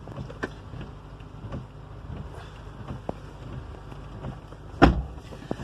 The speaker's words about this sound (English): Great. Glad my car started.